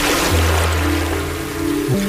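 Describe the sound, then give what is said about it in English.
Soft, steady trickling of stream water runs beneath calm relaxation music, with long sustained oboe tones that shift pitch near the end. There is no talking. “I hear water.”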